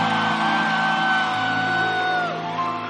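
A church audience gives a woman another round of applause and a shout. They applaud and shout together in a dense, steady roar, with sustained whoops and cheering voices riding over continuous clapping throughout, loud and unbroken.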